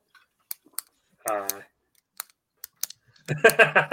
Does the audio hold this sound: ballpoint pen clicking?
yes